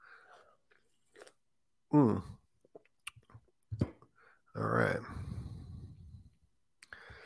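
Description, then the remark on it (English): Sipping of a drink followed by audible swallows and small wet mouth clicks, a few short gulping bursts and a longer breathy sound, all fairly quiet. “Just taking a sip.”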